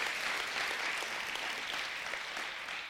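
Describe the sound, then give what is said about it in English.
Steady audience applause for the pastor and his wife fills the whole stretch, a dense wash of many hands clapping at an even, sustained loudness with no voices on top. “And I think we ought to just give your pastor and his wife a round of applause for showing us that quality.”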